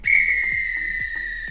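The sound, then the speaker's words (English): A single long, shrill referee's whistle blast, blown to signal the end of play, sounds loud, holding steady for over a second with a slight drop in pitch, alongside faint repeated low thumps. “If this were a real bit of extra time, this is when the ref blow the whistle, because it's finished.”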